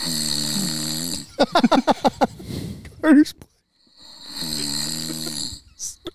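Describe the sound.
A person makes two drawn-out, rumbling snore sounds, with a short burst of speech between them and a brief pause before the second snore.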